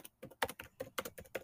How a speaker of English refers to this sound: Fast typing.